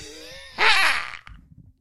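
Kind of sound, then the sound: human body sound, throat clearing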